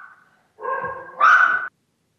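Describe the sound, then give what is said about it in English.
Two excited dogs bark and yelp in two quick, overlapping bursts as they greet someone, the second louder and higher, with a faint hum beforehand and no talking. “There's two dogs here where I am right now, and they're excitedly greeting somebody else.”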